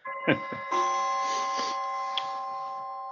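A cuckoo clock chimes the hour with a melodic run of sustained, ringing tones, punctuated by a few brief knocking clicks, steady and moderately loud throughout.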